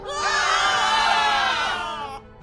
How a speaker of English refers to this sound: A huge anchor bursts through the skylight and lands on the envelope, popping it. The investors run for cover and scream.